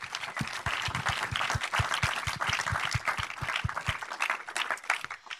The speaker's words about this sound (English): Can we all give them a round of applause and welcome them today?